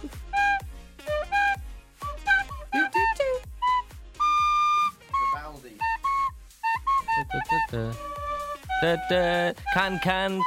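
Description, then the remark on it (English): A tin whistle plays Mozart's Eine kleine Nachtmusik, a lively classical melody. Its bright, reedy notes move quickly with crisp, detached articulation and a few held tones, loud and clear with no talking. “The tin whistle plays a big part in the show today.”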